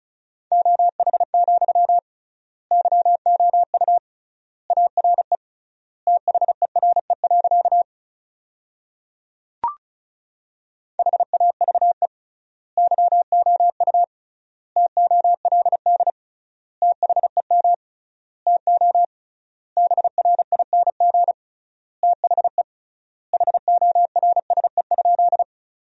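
Rapid Morse code practice at 35 words per minute, sending sentences from the top 500 words with triple word spacing: a steady mid-pitched tone keyed into quick dots and dashes, sent in word groups separated by wide pauses, with one brief click midway.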